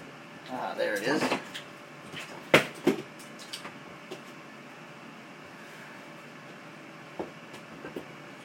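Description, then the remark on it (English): A cabinet door is shut with a sharp wooden knock and a quick second bump, preceded by brief rummaging clatter; a few faint taps follow. “Shut the cabinet door.”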